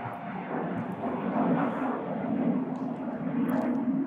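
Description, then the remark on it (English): A steady, rushing engine roar of an airplane passing overhead, with a low droning hum underneath. It swells slightly and holds at a fairly loud level throughout, with no voices. “Plane. Great time, Plane. Thank you, Plane.”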